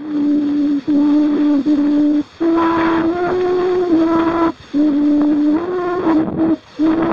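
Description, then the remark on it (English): An old, scratchy recording of a song from 1860: warbling, sustained mid-pitched notes in several short phrases separated by brief pauses, over a steady layer of hiss and crackle, with no talking. “A little dust on the needle.”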